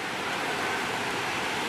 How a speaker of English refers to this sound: Listen, God's raining on us right now.